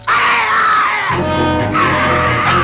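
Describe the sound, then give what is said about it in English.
A man in an ape suit, working its mouthpiece, lets out loud, strained creature cries, a rough shrieking wail that breaks into a harsher harmonic bleat midway, then returns to a raspy scream, imitating an ape. “And he definitely works the mouthpiece very well. And he makes these noises.”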